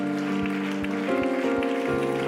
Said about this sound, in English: Come on, why don't everybody clap your hands to the Lord together?